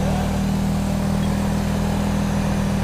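The engine of a Taurus standard police cruiser roars loud in a steady, droning hum with a constant low pitch, holding its revs throughout with no voices over it.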